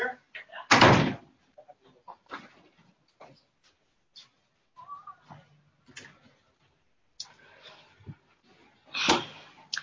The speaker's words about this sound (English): And I'm just going to shut this door. Somebody came through and opened it and didn't close it. And there's a kitchen next door.